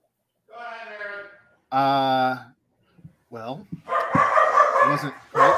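Dogs bark in loud, drawn-out, whining bursts, two long howling barks followed by a rough, overlapping flurry of yaps and noise that runs to the end.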